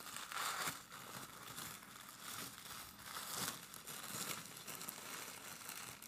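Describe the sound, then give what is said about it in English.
Wrapping paper from a Mint Mongoose package crinkling and rustling, a continuous crackly handling sound with bursts of louder crumpling and tearing, no voices. “And it always comes wrapped up in this paper.”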